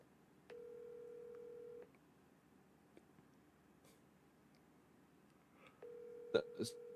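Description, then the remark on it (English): A telephone rings for an incoming call with two long, steady electronic tones separated by a pause of several seconds, over a faint murmur of background noise, with a couple of sharp clicks near the end. “Hold on, I'm getting a call.”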